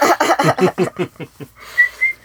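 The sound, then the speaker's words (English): A voice imitates a robot, firing off a quick run of about eight clipped, squawky beeps that fade as they speed up, then a couple of steady, high whistled tones. “Beeps, whistles, and squawks.”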